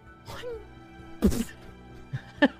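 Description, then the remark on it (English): A single heavy, dull thud of an apple landing on a table stands out loudly midway. Brief murmured voice sounds come before it, and a few short voiced syllables follow. “Apple just lands, thuds onto the table”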